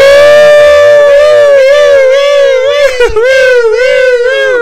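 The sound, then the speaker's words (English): A loud voice imitates a wailing siren, holding a steady high pitch with wavering rises and falls for several seconds, with no other sounds around it. “That was even more obnoxious than the actual siren would have been.”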